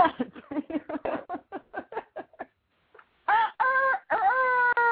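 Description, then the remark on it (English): A string of quick, choppy vocal bursts, then a loud, drawn-out cock-a-doodle-doo crow in three rising and falling sustained notes, done by a caller on a phone line imitating a rooster, clear. “How can a rooster you know be off key?”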